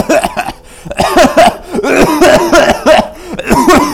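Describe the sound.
A voice imitates a string of harsh, breathy coughs, loud, coming in rapid uneven bursts for several seconds with barely a pause between them.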